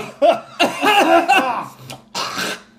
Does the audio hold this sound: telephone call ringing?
no